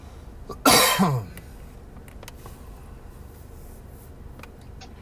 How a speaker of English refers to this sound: That was a sympathy cough for Andrew.